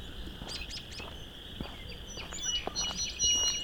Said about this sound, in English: It's an interesting song sparrow. It's about a half hour before sunset, but it's overcast. This song sparrow is right in front of me, but singing quietish. Several song sparrows here.